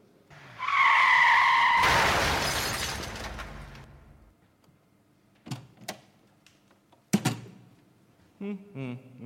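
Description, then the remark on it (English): Car tyres screech in a long, loud skid, then a heavy crash as the car drives into the first-floor billiard room of the Rowdington Club, with shattering debris rumbling away, followed by a few scattered clunks and knocks as things settle. “Park the car, will you? I've left it in the usual place. Ah, yes, the first floor billiard room.”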